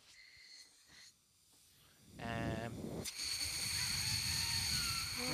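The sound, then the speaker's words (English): Lips buzzing into a brass mouthpiece pressed on with playing pressure: after a quiet start, a low, reedy buzz sounds for under a second, then a louder, rougher, breathy buzz carries on steadily to the end. “I think you just started buzzing intentionally.”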